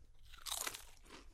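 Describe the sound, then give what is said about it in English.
A crisp, brittle crunch of someone biting into a PC homestyle-seasoned potato chip (sage, savory, marjoram, thyme and black pepper), a burst of bright crackling that peaks briefly and then fades into softer chewing. “I mean, PC, it smell like PC tends to do a lot of like imitation chips.”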